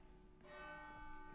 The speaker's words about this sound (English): Maybe we should wait for the bells. Yeah. Sorry, guys.